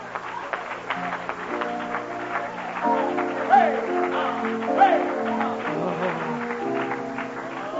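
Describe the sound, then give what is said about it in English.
A crowd stands and claps steadily and densely throughout for a man hailed as a hero, the applause blending with sustained musical tones and voices underneath, staying at a fairly even loudness with a couple of brief swells. “Let's stand to our feet and applaud him.”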